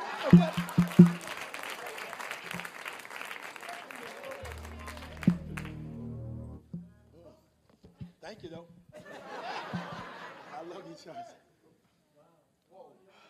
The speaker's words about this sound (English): All right. Well, clap your hands and give God the praise.